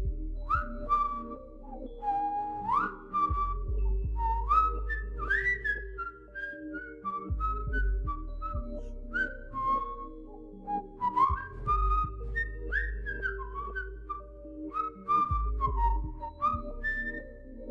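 A man whistles a wandering melody, first an air from Robert Le Diable, then a popular song, then a blend of the two: clear sliding notes rising and falling in continuous phrases over a low steady hum, with no talking.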